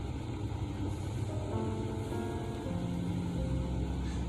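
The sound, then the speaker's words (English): A car heater blows steadily inside a parked car on a cold night, a constant airy rush over a low idling hum, with a few faint tonal whines drifting through and no talking. “And when I sit back in this car on this cold ass night with this heat on, if y'all can hear it,”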